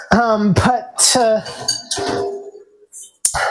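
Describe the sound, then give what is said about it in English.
A pot of potatoes boiling on a gas stove, its lid clattering and clinking in quick, uneven bursts with a short metallic ring, alongside tonal, voice-like sounds. “That's the sound you want to be listening for to tell you that your stuff is boiling.”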